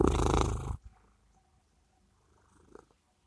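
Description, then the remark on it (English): A female blue smoke Maine Coon cat purring on her owner's lap, right against the microphone, a loud rumbling burst that cuts off after a moment and leaves only a faint, low purr in the quiet. “She has a very sweet purr.”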